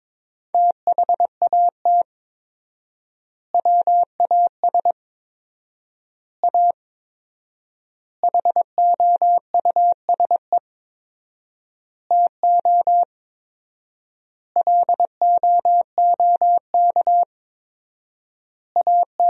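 Morse code sent at 22 words per minute with 4x word spacing, keying sentences built from the top 200 words: one steady mid-pitched tone keyed into quick dots and dashes, with noticeably long silent gaps between word groups. No voices.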